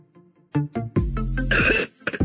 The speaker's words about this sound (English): Oh, I knew it. You were going to put me on just as I was hacking and coughing.